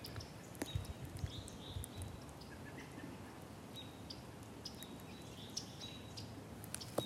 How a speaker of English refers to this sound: Little chip chip chip. It's a yellow rump warbler.